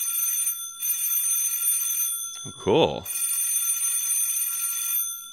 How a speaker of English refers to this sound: So I had a little electric bell set.